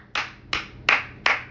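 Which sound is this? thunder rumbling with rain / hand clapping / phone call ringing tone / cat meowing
hand clapping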